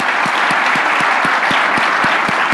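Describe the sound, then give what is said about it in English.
An audience applauds a guest speaker at the end of a talk, clapping steadily in a dense, loud wash of many hands, with a few sharper individual claps standing out at a regular pace. No voices are heard. “So let's give him a round Thanks of applause.”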